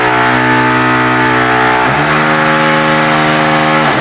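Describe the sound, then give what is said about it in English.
A plumber's power drill bores through a kitchen floor down into the basement to attach a water line for a new fridge's water dispenser: a loud, continuous motor whine with buzzing harmonics that steps to a new pitch about halfway through and shifts again at the end. No voices. “That is a plumber drilling into my kitchen floor down into the basement to attach a water line so we could have a water dispenser on our brand new fridge.”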